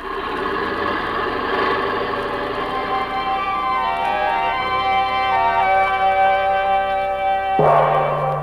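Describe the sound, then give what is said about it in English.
Bells ring out with rich, lingering metallic tones that overlap and hum for several seconds, then a fresh, louder strike lands near the end. No one speaks. “Look what the bell brought.”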